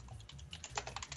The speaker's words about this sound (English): Someone's beating the shit out of our keyboard over there. And I thought I was bad. It's me. Damn, that was my old keyboard. I've never gone postal on it, you know? I don't understand.